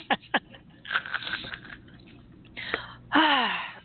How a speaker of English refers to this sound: As she takes a big sip. Sip timeout. You can hear the back swig in the microphone.